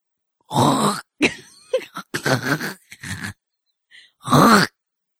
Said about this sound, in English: It just sounds like you're ready to hawk a loogie. Oh. This is a throat thing.